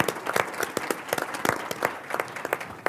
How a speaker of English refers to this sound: I want to thank all of our panelists. Round of applause, please, for our panelists.